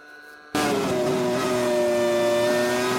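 A Formula One car engine cuts in abruptly after a brief quieter moment, then holds a loud, high-pitched whine at steady revs as the car carries through the first part of the Spoon corner, with no talking.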